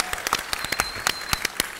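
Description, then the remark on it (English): An audience at a fundraising event applauds itself for coming out to raise money, with a patter of sharp, overlapping handclaps that stays steady and moderately loud throughout. No one speaks over it. “Give yourself a round of applause for that, absolutely.”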